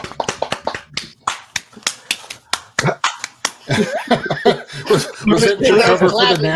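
A quick, uneven flurry of sharp hand slaps, someone swatting at gnats in hot, humid Tennessee weather, gives way to people laughing and chattering loudly over a few more smacks.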